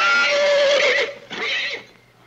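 A horse whinnies loudly, one long shrill, quavering call followed by a shorter snorting burst that trails off, with no other sounds around it.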